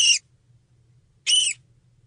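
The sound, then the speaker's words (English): Two short, high, shrill contact calls from a flying fox mother, each a harmonic squeal lasting about a quarter second, separated by roughly a second of quiet over a faint low hum. “And the contact calls from the mother sound like this.”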